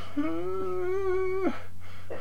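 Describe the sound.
A voice imitates a person whimpering: one drawn-out, steady whiny tone lasting about a second, rising slightly before it cuts off. It is clear over a faint low hum.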